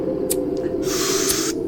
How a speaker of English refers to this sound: You got a light there? Yeah. Matches. I'll light them up.